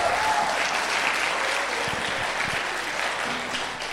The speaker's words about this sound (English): Let's give him a big clap and honor him this morning.